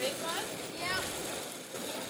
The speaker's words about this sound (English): Big one? Yeah. Wow, we're getting wet. We're getting splashed from that one. That's big, nice old rainbow trout.